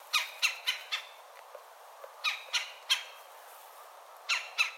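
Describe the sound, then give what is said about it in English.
A red-bellied woodpecker gives harsh, rolling chuck calls in quick bursts, first four, then three, then two, clear against a quiet background with no talking. “But really the most distinctive part of this bird is its chuck chuck call.”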